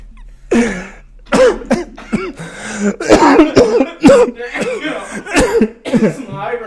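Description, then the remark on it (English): A loud, close coughing fit right up against the microphone: a rapid series of harsh, raspy coughs and throat-clearing hacks, one after another for several seconds. “I ain't trying to cough all over the mic, my bad.”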